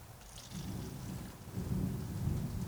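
Steady rain hisses while a deep, rolling thunder rumble builds underneath, swelling louder about halfway through; no voices, just a continuous stormy wash.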